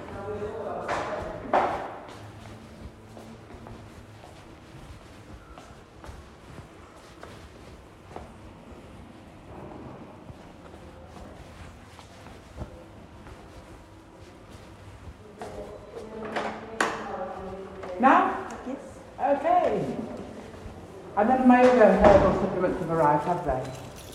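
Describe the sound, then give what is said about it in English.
A door is pushed shut with a few dull knocks and a soft thud, followed by shuffling, creaking movement and muffled voices toward the end. “She might be a minute, I'm just going to shut the door.”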